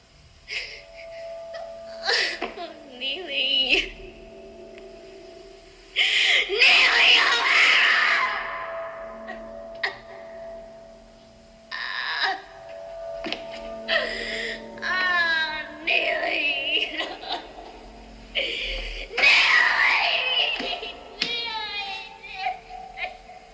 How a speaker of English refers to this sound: And she's overacting this scene. She's like screaming and dying, and like, it's amazing. God!